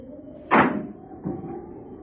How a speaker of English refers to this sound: They sat there in the car perhaps 10 minutes before the car door slammed shut.